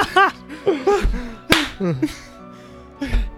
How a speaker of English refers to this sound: I slap him.